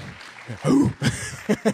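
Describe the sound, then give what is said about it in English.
A crowd claps once in unison, a sharp burst of many hands landing together, followed by scattered stray claps and murmuring voices. “One clap.”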